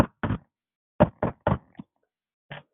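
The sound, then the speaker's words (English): A FedEx delivery knocking at a door on January 10th, 2020, solid: two raps, a pause, then a quick run of three with a softer tap, and one last knock after another gap. No voices. “Then in January 10th, 2020, I got the knock at the door.”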